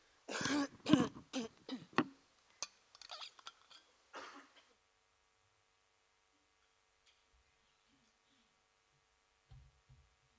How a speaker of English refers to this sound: I just need to have a quick cough, excuse me.